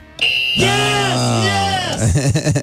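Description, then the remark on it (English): A loud, harsh game show buzzer blares for about a second and a half during a trivia quiz, its raspy tone dipping slightly before cutting off, followed by a quick burst of voices. “Come on, buzzer.”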